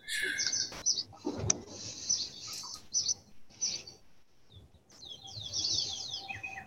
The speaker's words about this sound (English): God, the birds chirping. Man, this is our Masters episode. Can you actually hear that? Yeah. They're, like, pretty good, too. I can, like, faintly hear them, but I do have noise-canceling headphones, so that's probably why.